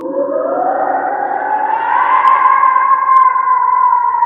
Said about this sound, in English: What was that awful screech? A banshee. Does it all the time.